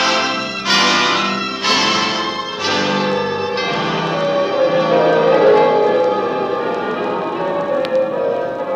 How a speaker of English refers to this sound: Bells of Paris.